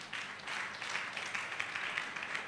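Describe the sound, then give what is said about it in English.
An audience at a church service claps their hands for Jesus in a steady, dense burst of applause, many hands overlapping at a sustained moderate volume with no voices standing out. “Clap your 2 hands for Jesus.”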